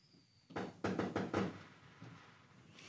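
Fireworks popping off outside in the neighborhood: four sharp, booming cracks in quick, uneven succession, followed by a fainter pop or two as things settle. Fairly quiet overall, with no talking.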